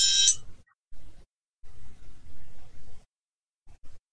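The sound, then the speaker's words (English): A phone's reminder alarm, set as a reminder to turn the phone off, chirps briefly at the start, a bright, shrill electronic tone lasting under half a second, followed by quiet, muffled low rumbling in bursts. “My reminder to turn my phone off.”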